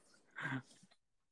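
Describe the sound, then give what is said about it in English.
A single short, faint dog bark from dogs at a trailer rises briefly out of a quiet background and fades into near silence. “Well, just I got dogs barking on the trailer. So can y'all hear the dogs?”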